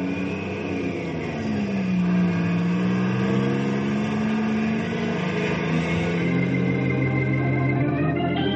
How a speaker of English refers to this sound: I'm going to ride in the truck down to the warehouse.